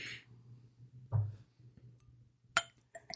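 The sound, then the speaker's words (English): Champagne glasses clink together in a toast to the new year 2014, one bright, sharp tap followed by a couple of fainter small clinks. A dull thump comes earlier, all against a quiet low hum with no talking. “Haven't we already drank champagne on this podcast?”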